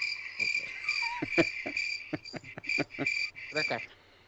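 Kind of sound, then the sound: insect, cricket chirping sound effect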